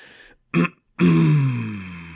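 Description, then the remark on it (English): Someone clears their throat: a short rough burst, a brief pause, then a longer, louder rasping clear that trails into a falling, voiced grumble. “Make sure you clear your throat.”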